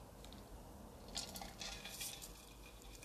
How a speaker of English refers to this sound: Okay, I just had to swallow ice cubes. A little ASMR for you guys. I hope you enjoy it because it grosses me out.